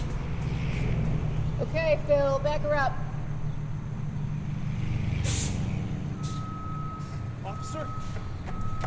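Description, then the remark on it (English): A heavy tow truck engine rumbles throughout as a car is towed on a Hollywood street corner in early June 2020, with a sharp hiss of air brakes midway, then a steady, high electronic reversing beep sounds over the idling engine near the end. “Jake, a black male in his 30s, arrives to find his car being towed by a white female officer named Pierce.”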